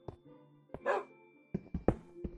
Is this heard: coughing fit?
no